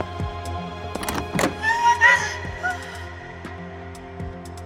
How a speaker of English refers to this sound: All right, we'll go together. And Eliza opens the door.